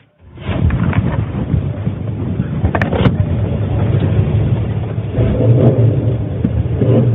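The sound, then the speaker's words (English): An old, restored Chevrolet Chevelle car engine rumbles loudly and steadily at the Phillips County Motor Speedway, its low throaty drone swelling and surging as it revs, with no voices over it. “Now this is a Chevrolet Chevelle.”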